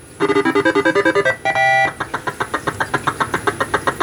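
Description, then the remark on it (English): Zippy video game start music: a quick run of bright, buzzy electronic notes, a short held tone, then a fast pulsing rhythm, loud and with no talking. “Wow, that's some zippy start music.”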